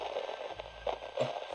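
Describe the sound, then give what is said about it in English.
Steady radio static from many radios lining the walls of a building hisses throughout, broken by a few louder crackling bursts and pops, with a low hum underneath. No voices are present. “Can we turn the static off?”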